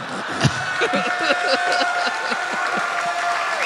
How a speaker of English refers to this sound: You guys, don't applaud like he came up with that originally.